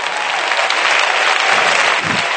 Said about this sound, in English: Oh, let's clap our hands and give him praise.